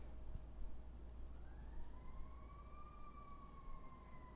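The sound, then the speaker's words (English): An ambulance or fire truck siren wails in a slow rising sweep over a steady low rumble of traffic with no one speaking. “Where I just lift up wherever that ambulance or fire truck is going, and I pray that you'd be with them.”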